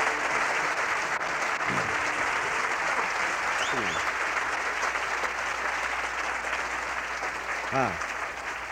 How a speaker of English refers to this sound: Yeah, that's right. You folks are clapping your hands just like true Sangerites.